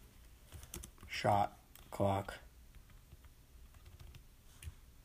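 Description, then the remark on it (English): Soft, irregular tapping of keys on a computer keyboard as someone types in the name "Chip B." while checking who came up with the NBA's 24-second shot clock, quiet and steady throughout, while a voice briefly speaks a couple of words partway through. “Type in Chip B.”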